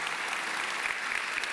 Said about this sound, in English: Good morning. Let's give the Lord another round of applause. Can we do that this morning?